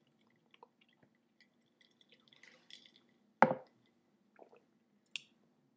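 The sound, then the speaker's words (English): Quiet sipping of water: faint wet clicks and small slurps, one louder gulp in the middle, over a low steady hum with no talking. “Sips water.”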